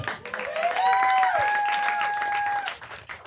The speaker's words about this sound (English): come on, audience! Big round of applause. Who enjoyed the movie?